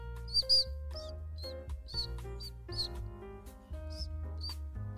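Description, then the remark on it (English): A string of short, high-pitched squeaks made with the mouth, quick and irregular, sounding like a mouse or a squeaky chair, over a low steady hum with faint tonal background. “I thought that my chair was squeaking, and I look, it was coming out of your mouth.”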